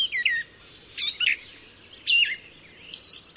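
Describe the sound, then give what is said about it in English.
A gray catbird sings a jumbled string of varied, high chirps and squeaky whistles, delivered in four quick bursts separated by short pauses, with no voices present. “Female and male gray catbirds both have a dark cap on their heads and a rusty brown patch under their long tails.”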